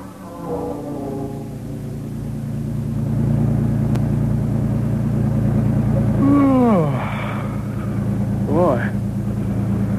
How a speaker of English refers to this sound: Beautiful scenery and the soothing vibration of the car.